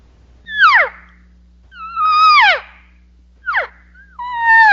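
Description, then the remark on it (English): Four clean cow calls blown on a latex reed call, each a clear, pure mewing note sliding down in pitch, spaced irregularly, with a faint steady hum underneath and no talking. “And so, you know, the pure note or the clean note, I'll do a cow call first and then that contact buzz.”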